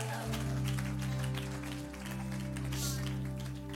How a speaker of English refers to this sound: Anybody still in California believe that God's not done here? My mom believes it. That's clapping in the back. That's it.